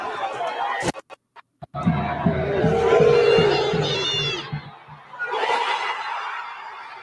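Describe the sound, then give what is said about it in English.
A football crowd yelling for a player to shoot and roaring as he scores a goal, swelling into a loud sustained surge after a few sharp knocks, easing briefly, then rising again in a second burst of cheering. “And you can hear them yelling, shoot.”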